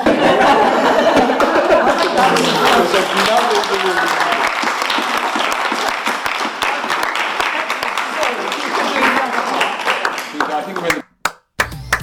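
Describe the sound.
Audience applause, a dense, steady wash of many hands clapping for about eleven seconds, with some voices mixed in, then cutting off abruptly into a few isolated final claps.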